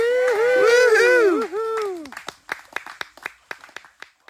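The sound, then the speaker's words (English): A burst of studio-audience applause from a clapping machine, with whooping cheers at first, then the cheering drops away and the clapping thins to scattered, separate claps that fade out. “I had to get the clapping machine going there.”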